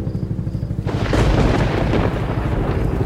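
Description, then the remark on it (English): A low, steady rhythmic thumping gives way after a second to a sudden, loud crash of thunder during a lightning storm that rolls on heavily and fills the rest of the moment, overwhelming. “But even with the lightning, I saw nothing.”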